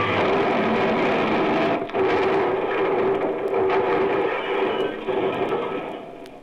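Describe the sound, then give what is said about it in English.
A plane lurches sharply and rushes downward much too fast in a loud, unbroken roar of wind and engine, with a steady droning hum running through it and a brief dip partway before the rush fades slightly at the end. “There was a loud rushing sound in my ears, and I realized that we were coming down.”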